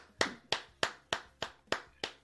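Seven sharp handclaps in a steady, even rhythm, crisp, like one person applauding alone with no voices around, welcoming a guest to a show.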